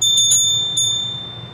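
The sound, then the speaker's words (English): A small, bright bell dings three times in quick succession, two strikes close together then a third, its clear metallic tone ringing on and slowly fading. No one speaks. “Ring the bell so you can be notified.”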